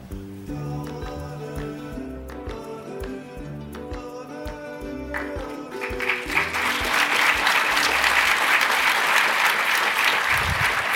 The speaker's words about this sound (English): We'll be passing that applause on to Anne. Yeah, absolutely. Make sure we do.